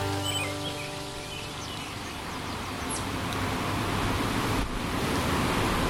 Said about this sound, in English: It's pouring rain, but it doesn't sound like it. It just sounds like hissy noises. That's disappointing.